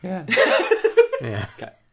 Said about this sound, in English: Cough.